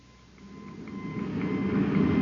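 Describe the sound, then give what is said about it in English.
A hissing, crackling wash of radio static with faint thin whistling tones running through it, swelling gradually louder over a couple of seconds, with no voices. “The interference is gone, sir.”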